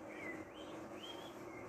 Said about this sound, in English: There's even sounds of birds, I think. There's a lot of little sounds in this song just kind of fluttering around. in the background.